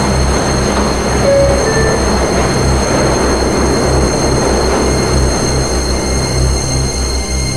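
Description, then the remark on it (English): A Queens-bound E train running via the F line rumbles loudly and steadily as it pulls out toward the next stop, 42nd Street–Bryant Park. It has a deep low-end drone and dense mechanical clatter, with a couple of brief high wheel squeals over the continuous roar. “Is a Queens-bound E-train via the F line.”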